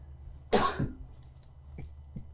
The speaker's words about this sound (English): So would you like me to cough on you?